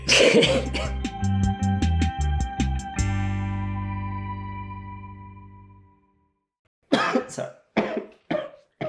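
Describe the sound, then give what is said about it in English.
Rapid, rhythmic run of harsh coughs that rings out into a long echoing tail, then after a pause, a few more rough coughs and throat clearing. “Don't stop you from coughing. It stops the tickle in your throat.”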